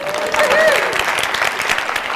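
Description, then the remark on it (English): A crowd at a talk by a hypnotist applauds steadily for his shoes, dense overlapping claps forming a loud, even wash of sound, with a few faint whistles or cheers rising briefly over it. “And can I just get another round of applause for my shoes, please?”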